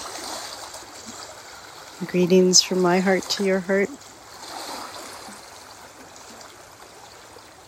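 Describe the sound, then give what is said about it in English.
Water of the Big Lake Kichigami laps against its north shore in a steady, soft wash that runs the whole time, with a calm voice speaking briefly over it partway through. “Greetings from the waters here on the north shore of the Big Lake Kichigami.”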